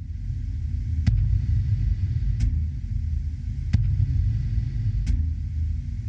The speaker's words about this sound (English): At this part of the track, you're hearing a heartbeat.